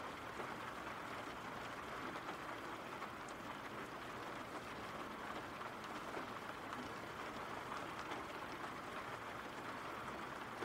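Steady rain falls without pause, a dense, even hiss of countless drops with tiny pattering ticks scattered through it. The level stays constant from start to finish, and no voices are heard.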